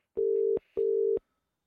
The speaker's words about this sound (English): I'll just try and ring him there now for the crack. Okay. Hold on.